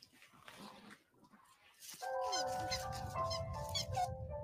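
Soft snuffling sniffs, then a Dalmatian puppy's high, wavering whimpers and whines that continue steadily, with no talking.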